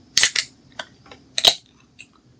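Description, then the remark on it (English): A beer being opened at the back of a house: a few sharp, bright clicks and snaps, with a louder crisp pop and brief fizz in the middle, then a final small click, no voices. “We're going to open this beer, guys.”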